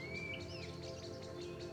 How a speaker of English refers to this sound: Birdsong emanates all around, and the scent of flowers lifts your spirit.